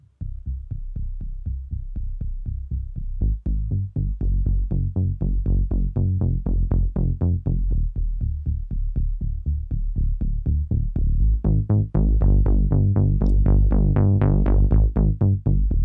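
A Moog Minotaur analog synth, its filter opened a little to add modulation, plays a repeating bass line of fast, pulsing low notes with strong harmonics, growing brighter and more growling toward the end, with no voices.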